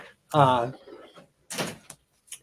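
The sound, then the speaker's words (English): A door creaks open with a short, loud squealing hinge tone, followed by a rougher scraping rattle and a couple of small knocks, with some voice-like sound around it. “She's door's about to open.”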